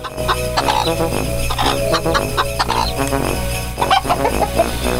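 chickens clucking

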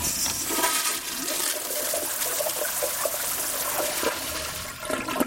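toilet flushing

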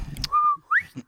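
human whistling

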